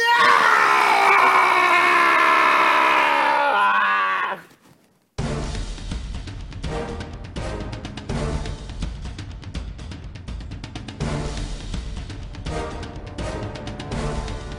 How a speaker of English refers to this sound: Did you hear me scream? I did.